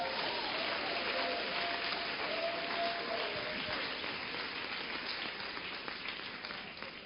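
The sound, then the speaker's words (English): A large crowd claps together in dense, sustained applause given as a clap offering to the Lord, a steady patter of many hands that fills the whole stretch and eases off slightly toward the end. “Why don't you give the Lord a wonderful, wonderful clap offering?”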